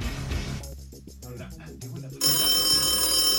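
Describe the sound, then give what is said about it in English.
A telephone rings with a bright, repeating electronic tone, mixed with a busy musical-sounding backdrop that grows louder and noisier toward the end. “I got to put it up so that Corey Feldman's calling me.”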